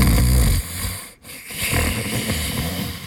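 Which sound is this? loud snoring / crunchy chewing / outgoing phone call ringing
loud snoring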